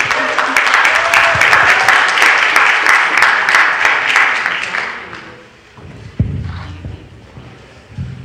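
A church audience applauds a guest preacher loudly in a dense, steady wash of clapping for about five seconds, then it fades out, leaving a few low thumps and scattered noises.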